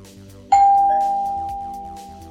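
A doorbell at a home in the 1980s chimes once, a bright single tone that strikes sharply and rings out with a long, slowly fading decay over a faint low background hum.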